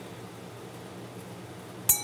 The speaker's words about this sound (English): I'm now pressing the button. And there you go, we get a nice chime that certainly sounds better than any beep or buzz I'm gonna get out of the little speaker that's built onto the clue there.